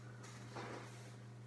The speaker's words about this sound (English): Ali hasn't been in a God story in a while. Normally she's here. And I think she just scratched on the door and came in.